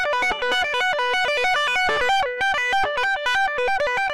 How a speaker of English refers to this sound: Tapping is the name of the technique where a player adds their right hand to the mix, effectively executing hammer-ons and pull-offs with both hands.